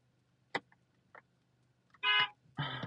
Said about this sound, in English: Like, sorry, I had a honk because this guy just blew it. Ugh. Yeah, like, I was like, we were at. The light turned red on me because this guy was on his phone and he was just like there, not going.